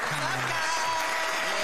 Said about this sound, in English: Yeah. Round of applause, man.